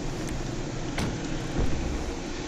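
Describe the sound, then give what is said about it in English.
A car rumbles steadily, as if easing slowly into a parking spot, while being parked inside, with a couple of brief soft knocks over the low engine and road noise. No one speaks. “Alright, park my car inside.”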